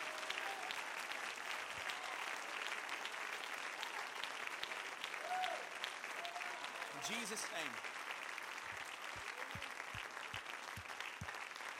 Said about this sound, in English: If you've been saved, reconciled by the blood of the Lamb, would you give him one more hand clap of praise before you're seated here tonight?